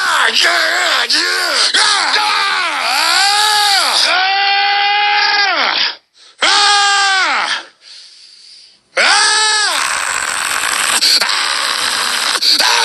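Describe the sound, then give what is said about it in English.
Alex Jones screams loudly in long, strained, wavering bursts, breaking off briefly twice before launching into another raw, drawn-out yell. “In case you couldn't tell by the screaming.”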